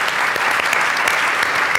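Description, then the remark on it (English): Steady, dense applause from an audience at an evening event, thanking the co-presenter, the UCLA Anderson School of Management, many hands clapping at once in a loud, continuous wash of bright crackling claps with no voices standing out. “A big round of applause for them, please.”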